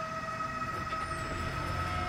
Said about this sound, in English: It was a sound of metal scraping against metal. A loud, unpleasant screech echoing through the forest. This time it was deafening, omnipresent, brutal and terrifying.